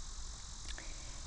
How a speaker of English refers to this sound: And there's always some type of insect or frog that's louder than usual.